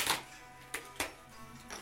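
Small hard pieces clack and click together in a few scattered bursts, fairly quiet, as gold coins and tokens for the Red Dragon Inn game are unpacked and handled by hand, with no talking.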